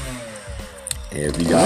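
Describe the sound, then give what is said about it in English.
Outdoors, a motorbike ridden by a man hums steadily, its pitch sliding lower before revving back up, with a person talking over the later part of the sound. “As you guys know, I'm sitting outside doing my podcast and I have some guy over here on the motorbike.”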